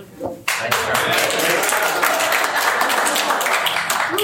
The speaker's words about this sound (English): Clap for my 28. I know some of you have probably been married longer, but you know, 28's not bad, okay? So 28 years of marriage.